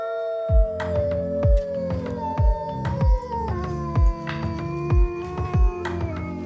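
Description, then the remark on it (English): A long, drawn-out wolf howl glides slowly downward, layered over a steady, booming drum beat and bright musical tones, with no one speaking. “Let's talk about some wolves.”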